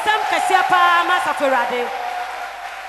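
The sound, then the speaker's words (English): A church audience claps their hands for the Lord as a clap offering while voices shout and cheer over the top. The clapping forms a dense, continuous patter that holds loud for the whole stretch. “Oh, give the Lord a wonderful clap offering.”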